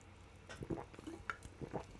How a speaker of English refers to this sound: I'm going to take a little sip of root.